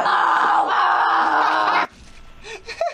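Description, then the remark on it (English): A woman in labor lets out one long, loud, strained scream that holds steady for nearly two seconds, then cuts off abruptly, followed by faint breathy shuffling and a few small sounds. “Nah, it was a woman in labor.”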